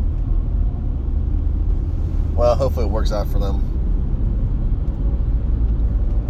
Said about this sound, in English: There's obviously a wreck somewhere. I was wondering why traffic was so bad here, but yep.